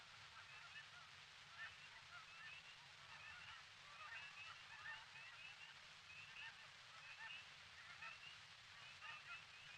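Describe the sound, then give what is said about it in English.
A large flock of Canada geese honks continuously, many overlapping calls blending into a steady clamor over a low rumbling background. “Special notes on the Canada goose may be obtained from the Canadian Wildlife Service, Ottawa.”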